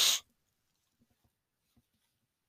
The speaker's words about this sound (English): Sniffle for you, excuse me.